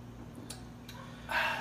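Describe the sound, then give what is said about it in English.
A couple of sharp plastic clicks as a clear bottle of water is opened, then a short breathy burst of a sip from it over a low steady hum, with no talking. “Open up a clear bottle of water, y'all. Take a sip of it.”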